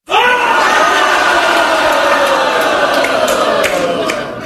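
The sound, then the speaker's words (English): A large crowd laughing loudly and continuously, many voices blending into a dense roar that starts abruptly and holds steady for a few seconds with no talk over it. “It was just going to be the crowd laughing would be the joke.”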